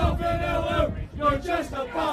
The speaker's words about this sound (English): This is a bit of a Brentford-related chant here.